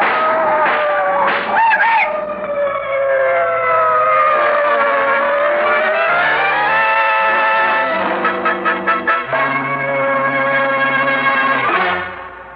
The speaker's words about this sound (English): those cars! What the... They're coming this way. Jump quick, they'll hit you!